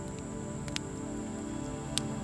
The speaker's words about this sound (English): So as you continue to listen to the rain outside, you feel so sleepy, so very, very sleepy.